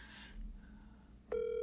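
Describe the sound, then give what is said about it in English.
After a second of quiet hiss, the ringing tone of a phone call to the speaker's brother starts abruptly: a loud, steady, buzzy electronic tone that holds without a break to the end, with no voices. “I'll call my brother and ask him that question.”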